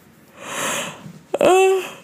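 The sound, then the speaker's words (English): A long yawn: a breathy drawn-in breath followed by a short voiced, slightly falling groan as it ends. Nobody speaks. “Every time I used to do podcasts, I start yawning.”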